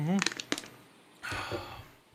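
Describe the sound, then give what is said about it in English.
A drink can is cracked open: a couple of sharp clicks after a brief voiced sound, then a steady fizzing hiss that lingers for about a second. “Crack it open.”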